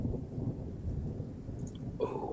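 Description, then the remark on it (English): Low, continuous thunder rumbles in the background of a soundtrack, a deep steady roll at moderate volume with a brighter crackle near the end; no one speaks. “I can hear the rustling of the soundtrack now. Getting me Thunder.”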